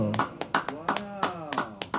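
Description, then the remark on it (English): Sparse applause from an audience of just two people, roughly a dozen sharp claps in an uneven rhythm, with a voice sounding underneath. “Just because there's two of us, you applaud as long as you would if there was 200 of us.”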